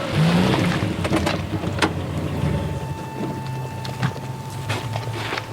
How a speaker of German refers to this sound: Dort! Kommt er! Das ist sein Wagen.